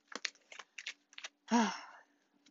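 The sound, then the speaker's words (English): A Rider-Waite tarot deck being shuffled: a run of quick, dry papery taps in short bursts, followed by one louder fluttering riffle that trails off. No one speaks. “I am shuffling the Rider-Waite tarot.”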